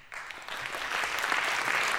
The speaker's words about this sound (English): can I get some cheering? Some kind of applause? Some fanfare of some sorts?